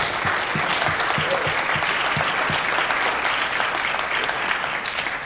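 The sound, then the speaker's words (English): A church crowd applauds the announcement of a newly hired women's director, clapping steadily for about five seconds in a dense, even wash of many hands at a constant loudness, with a few distinct claps standing out at the start. “You can clap for that.”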